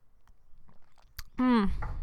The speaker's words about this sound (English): Hold on, let me take a drink of water.